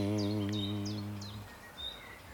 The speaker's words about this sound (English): Does it feel different singing it out here in the open air with the birds singing all around you? Immensely distracting. They're putting you off. Well, it's really hard because it's like, because they're all talking to each other.